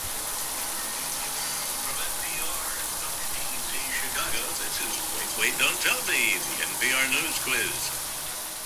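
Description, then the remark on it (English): A shower runs with a steady, even hiss of spraying water, while a faint, muffled voice speaks in the background over the second half. “From time to time, I'll put a podcast on in the background while I'm taking a shower, too.”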